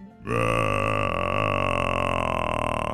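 A hippopotamus gives a loud, deep grunting call that starts abruptly and holds for nearly three seconds as one long, rough, steady rumble with no voices, heard from a tent beside a lake in Kenya.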